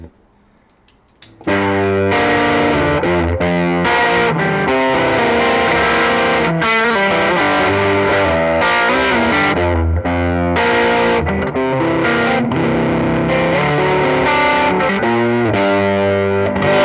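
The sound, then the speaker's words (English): After a brief quiet moment, an electric guitar played through a distortion pedal used as a boost, with a Color Box pedal also on, kicks in loud and crunchy, playing a thick, sustained riff of chords and notes with no talking over it. “Yeah, I mean, I use it mainly as a boost for, like, I never really have it throughout a tune, just because it's so powerful, and I have it dialed in so it really kicks up, like.”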